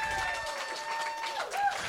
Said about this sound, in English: All right. One more time. Give a big round of applause to Mr.